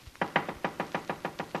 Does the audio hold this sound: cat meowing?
no